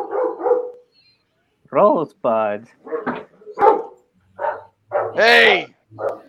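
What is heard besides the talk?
dog barking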